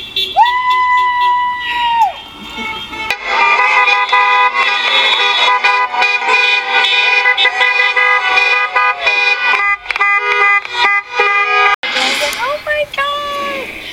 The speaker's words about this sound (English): And I go outside, and then I start seeing a whole bunch of cars coming down the street and, like, honking their horns. And I was like, oh, my God.